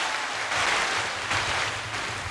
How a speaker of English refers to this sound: So we chose applause this week. We did. I was thinking about playing one of the other preset funny sounds to add some humor.